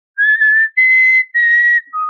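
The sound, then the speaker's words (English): A person whistles a short tune to teach parrots, three sustained clear notes followed by a lower brief one, fairly loud with no talking. “I would just push the cart, and I would go into, like, the parrot area, and I was constantly trying to teach them how to do.”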